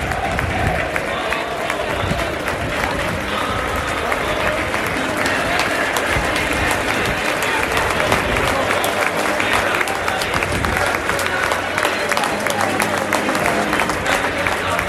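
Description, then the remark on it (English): Dense, sustained applause from a large crowd at an Everton football match stadium as players, including Anthony Gordon, come over to clap the fans, steady and loud throughout with a broad wash of clapping and crowd murmur. “Andy Gordon in particular is spending a bit of time clapping the fans.”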